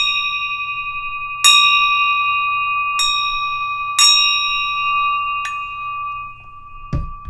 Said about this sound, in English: Can I ring that bell again? I think I want to ring the bell.